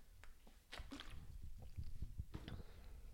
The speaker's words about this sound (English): So ask yourself, have I drank water in the past 30 minutes? Even if you have, grab your water, maybe pause the podcast and get your water, and we're going to chug and hydrate our hot bods on 3, 2, 1.